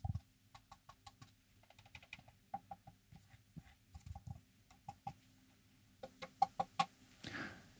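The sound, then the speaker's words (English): Fingernails tap and run along a trophy topped with a gold pigeon figure, in quick, irregular clusters of crisp clicks, ending with a brief scraping rub. The sound is quiet, with no talking. “So I'm just going to kind of like tap and run my fingers and fingernails along this, and that'll be the ASMR segment for this episode.”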